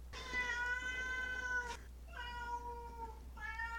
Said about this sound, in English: There's my daughter's cat again, coming to visit us.